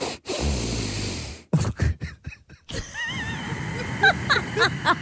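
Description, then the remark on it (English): A person's heavy breaths rush in and out, then turn into snuffly nasal snorts with thin whistling squeaks, like air forced through a blocked nose. “Also sounds like you got stuff in your nose.”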